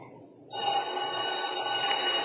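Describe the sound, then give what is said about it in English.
A telephone bell starts ringing abruptly about halfway in, a steady, sustained metallic ring that continues loudly and close by until the end, with no voices over it. “That's what makes the poor so happy. They don't have phones.”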